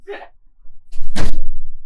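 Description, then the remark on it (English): A short scuffing noise, then after a brief pause a loud, heavy door thud with a booming low end that rumbles and fades over the next half second. “The door was not closed. That would do it.”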